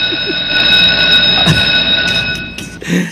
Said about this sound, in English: Let me ring a bell for you.